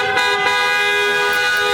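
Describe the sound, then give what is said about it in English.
Several car horns from more than 100 cars blare at once in a loud, sustained chorus, their steady tones layered with small bursts of extra honking on top, no voices heard. The cars surround Methodist Mansfield Medical Center in Mansfield to show appreciation for medical frontline workers. “Car horns never sounded so good.”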